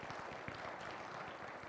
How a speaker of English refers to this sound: I'll tell her you clap for her.